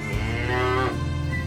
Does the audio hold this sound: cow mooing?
yes